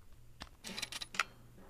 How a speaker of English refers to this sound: There is a shutter curtain even in this. It sounds pretty good when you turn the camera off.